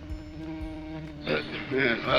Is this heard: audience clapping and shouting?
no